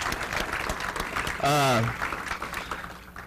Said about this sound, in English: So let's give us a round of applause for them.